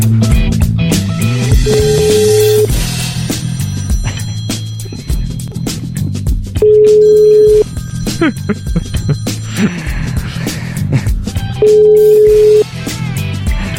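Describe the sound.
A phone ringback tone of an outgoing call to a guest on a live show repeats three times at steady intervals, each a clear, sustained tone lasting about a second, with music and background voices continuing underneath.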